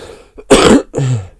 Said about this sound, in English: I'm sorry for coughing in your ear there, guys.